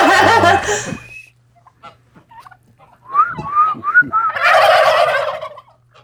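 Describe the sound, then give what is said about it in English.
Turkeys gobble loudly: one rattling gobble, a pause with scattered clucks, then a chorus of several birds answering together in a burst that fades. “Like one idiot just saying one thing and then a bunch of them just gobbling.”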